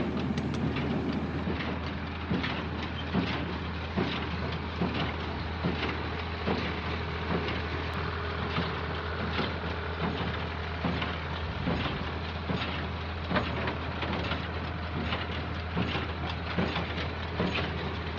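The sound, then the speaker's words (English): A steady mechanical clattering with a deep low drone and repeated knocking strokes from a running Massey Ferguson number 9 square baler, continuous and fairly loud with no talking. “while I think about it, the thing that comes to mind is a soundtrack, really, and that's the sound of a Massey Ferguson number 9 squill baler.”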